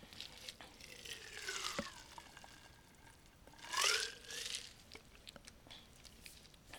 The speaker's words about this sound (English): Excuse me, let me drink some water because my voice is really scratchy and raspy.